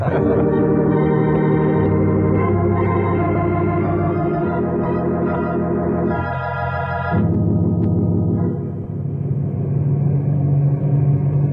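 A steady, droning engine of an amphibious propeller plane in flight hums throughout, a loud low rumble with strong harmonic tones that shift slightly in pitch as it cruises, with no voices.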